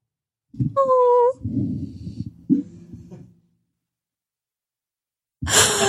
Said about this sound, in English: She's snoring. She's doing puppy snores.